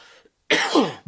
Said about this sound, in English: keep praying for my cough and my throat, I would appreciate that. It is a thorn in my flesh.